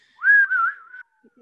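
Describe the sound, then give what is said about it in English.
A person attempts a cowboy whistle: a single steady whistled note lasting about a second with a slightly wavering pitch, followed by a brief faint noise. “Okay, so I'll do the cowboy whistle, but I can't do the cowboy whistle.”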